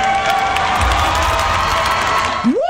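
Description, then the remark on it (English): A large crowd at the Miss America pageant cheers and shouts loudly after a contestant criticizes Trump, a dense, steady roar, with a single rising whoop cutting through right at the end. “That was just some Miss America contestant blasting Trump and the crowd cheering.”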